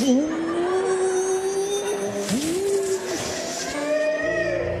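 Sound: car engine accelerating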